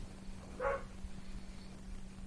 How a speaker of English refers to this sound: Surrounded by dogs. Yeah. Oh, you hear them too.